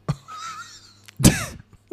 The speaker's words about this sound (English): Sorry, I've got a cough.